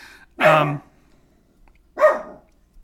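A puppy lets out two sharp, high, loud barks about a second and a half apart, with quiet in between and no talking.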